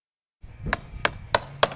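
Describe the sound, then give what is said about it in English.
Four sharp, ringing hammer strikes land at a steady pace, roughly one every third of a second, over a low background rumble, as about a dozen workers hammer nails and saw wood on a cold fall morning at a net zero affordable housing construction site in Basalt, Colorado. No talking is heard. “About a dozen workers keep warm by hammering nails and sawing wood on a cold fall morning in Basalt, Colorado.”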